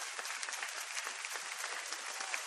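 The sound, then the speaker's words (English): Steady audience applause, a dense crackle of many hands clapping at once, holding an even level throughout with no voices standing out. “And he's getting applause for this nonsense.”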